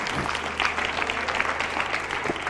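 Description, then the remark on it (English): A church audience, urged to get up and clap their hands, claps: many overlapping claps blend into a dense, steady wash of applause that stays loud throughout, with a low sustained hum underneath. “Come on, get up and clap your hand. Clap your hand.”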